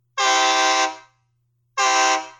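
A Nathan Air Chime K3 train horn sounds two loud blasts, each under a second, with a rich chord that rings briefly before cutting off. A faint low hum runs underneath; no one speaks.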